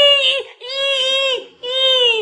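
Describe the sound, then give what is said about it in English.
A voice imitates a pig squealing: three loud, shrill, drawn-out squeals separated by short breaks, each held steady before dipping slightly in pitch at the end. “She begins to squeal like a stuck pig. She's like...”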